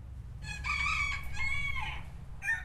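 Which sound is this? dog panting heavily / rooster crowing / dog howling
rooster crowing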